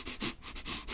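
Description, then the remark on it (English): A person snuffles like a pig, making a quick run of about five or six breathy sniffs in a steady rhythm, loud and alone with no talking. “Just you going around snuffling at garage doors, going.”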